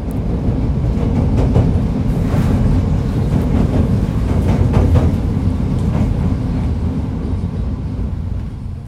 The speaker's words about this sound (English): but in this part of the track, it stays elevated about 2 stories up, and it gives you a really nice view of the city. I feel the train slowly sway back and forth as it changes tracks to avoid some construction.